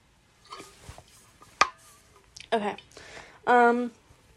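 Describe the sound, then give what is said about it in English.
Quiet sips of water with small wet slurps and a sharp swallowing click, followed by a brief voiced breath or satisfied sigh afterward. “Here, wait. Let's take a sip of water break, guys.”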